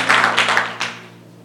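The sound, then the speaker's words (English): A worship crowd claps their hands together for the Lord as they take their seats, a dense, steady patter with a few louder swells, then the applause quickly thins and fades out within about a second, over a low steady hum. “Why don't you clap your hands together for the Lord as you take your seats.”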